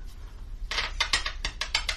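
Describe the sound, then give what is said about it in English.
A person imitates the clacking spine bones of a snake that weaves back and forth, with a quick run of about seven dry, sharp clacks in a loose, uneven rhythm, starting after a brief quiet moment. “With a clacking of spine bones.”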